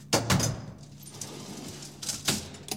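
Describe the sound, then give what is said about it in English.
A door is manually overridden and worked open by hand, with a couple of sharp mechanical clunks and rattles near the start and end, and a low hum in between. “Manually override the door.”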